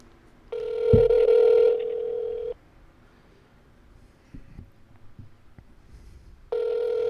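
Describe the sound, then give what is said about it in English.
A telephone ringback tone from an outgoing call to the radio station WZBT in Gettysburg, Pennsylvania: one steady two-second burble, about four seconds of quiet, then the tone starting again. It is clear and fairly loud, with no one talking. “Still ringing.”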